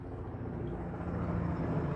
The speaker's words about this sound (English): And I know this helicopter's above me.